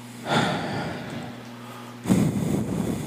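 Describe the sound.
A voice imitates the heavy, ghostly breathing caught on EVP ghost recordings in two long, breathy bursts: a drawn-out exhale, a pause, then another loud, raspy breath.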